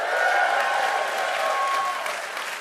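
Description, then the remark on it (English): A theater audience at the Alberta Rose Theater in Portland, Oregon, applauds during the LiveWire show, a dense, steady wash of many hands clapping at once that stays loud throughout and eases slightly toward the end, with no voices standing out. “and here with us is a wonderful crowd at the Alberta Rose Theater in Portland, Oregon.”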